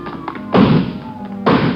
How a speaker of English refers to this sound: Come on, he broke through the garage doors.